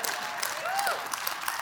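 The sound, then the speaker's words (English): A crowd claps steadily for God and his word, a dense wash of many hands applauding with no one speaking, while a faint rising and falling whistle-like tone drifts through the middle. “If you're going to clap, clap like you mean it.”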